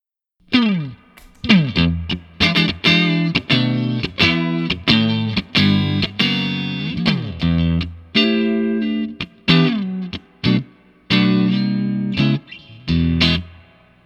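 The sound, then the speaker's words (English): An electric guitar played dry, without the vibe pedal switched on, plays a lively riff of chords and single notes with a gritty, overdriven tone, fairly loud, with no wobbling modulation effect and no voices. “And I'll play a little dry, just a little bit, and then I'll switch on the pedal.”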